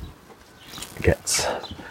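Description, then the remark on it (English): A large number of house sparrows chirp in short, bright bursts, with a louder flurry of calls near the end over a faint outdoor background and a brief low thump midway. “Along with an awful lot of sparrows.”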